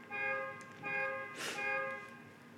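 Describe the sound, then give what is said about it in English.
A car alarm outside blares in repeated, steady high-pitched tonal blasts, about three pulses in a row, with a brief hissy burst between them and no talking. “Somebody's car's getting jacked.”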